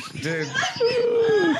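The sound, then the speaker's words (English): A dog whimpers in a long, thin, high whine that slides gently downward and fades out, preceded by a few short, voice-like yelps and murmurs. “That dog's from a different era.”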